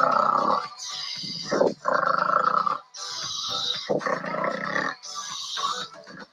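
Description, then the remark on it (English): A voice imitates the loud snoring of a big old green dragon going back to sleep for a nap: three cycles of a deep, rattling, growly snore, each followed by a long breathy hiss, repeating in a slow, steady rhythm. “He's a loud snoring dragon.”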